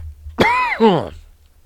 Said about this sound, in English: I'm not even going to edit out these coughs because that's true. That's real life shit right there.